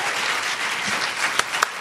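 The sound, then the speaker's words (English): Steady audience applause for a speaker who has just finished sharing at a meeting, a dense wash of many hands clapping at an even level, with a couple of sharper, louder claps popping out near the end. “Can we get another round of applause to Jessica?”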